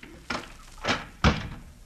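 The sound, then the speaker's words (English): Three sharp clacks and thunks at a door, like a chain being slid off and a lock turned open, with the last one the loudest and no one talking. “The chain. And the lock.”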